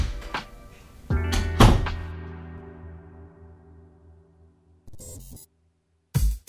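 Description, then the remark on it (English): A door is shut with a couple of solid thuds that leave a low, ringing resonance fading over a few seconds, followed by more short knocks and rattles. “can you please close the door?”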